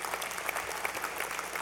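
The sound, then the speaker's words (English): A church audience claps steadily, the dense patter of many hands blending into a continuous wash of applause at moderate volume. “We should definitely clap for that, for Brian and for them.”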